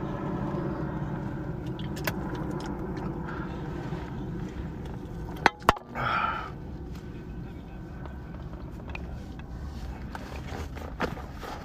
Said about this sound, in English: Hang on, there's a plane going over us.